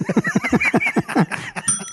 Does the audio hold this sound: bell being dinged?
yes